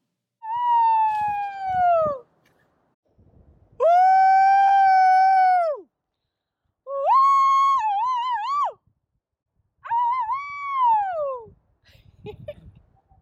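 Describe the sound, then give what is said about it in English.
Several long, loud human howls rise and fall one after another as people howl at the top of their lungs over a valley, each held for a couple of seconds with short pauses between, sounding open and outdoors, with faint rustling at the end. “it was therapeutic to howl at the top of your lungs over the valley, a way to cleanse your soul.”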